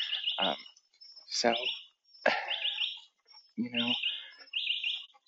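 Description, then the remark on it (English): Birds chirp outdoors in the early morning during a dog walk, in a series of bright, repeated bursts of song, each phrase separated by brief pauses, clear with no talking. “So I'm walking the dog right now, and it's early in the morning, so I can't talk too loud. But you can listen to the birds anyways.”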